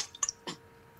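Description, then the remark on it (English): A person takes a quick drink of water: a couple of soft, wet sipping clicks followed by one muffled gulp, quiet and brief, with no talking. “Had to get some water in there.”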